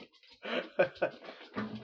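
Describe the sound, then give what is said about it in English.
A dog scratches at plastic, trying to scratch a hole in it, in several short, rasping bursts with brief pauses between them, fairly quiet, with no one speaking. “This dog just scratches up this plastic for days on end, and it's just trying to scratch a hole in it.”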